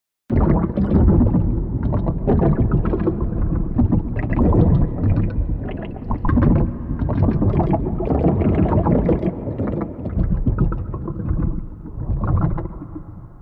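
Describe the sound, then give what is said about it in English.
Continuous sloshing, lapping water with a big added reverb smearing it into a dense low rumble, an environment sound made to evoke being right outside Moria, steady and fairly loud for the whole stretch with no voices. “Now, to really make this kind of all glue together and get that environment sound sounding really nice, I basically just added a big reverb, a big echo to the sound, and that really makes it start to sound like we're right outside Moria.”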